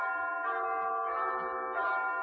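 A neighbouring church clock's bell chimes a quarter past, a resonant tone ringing steadily, its rich metallic overtones sustaining and shimmering with a slight swell near the end, heard alone at moderate loudness.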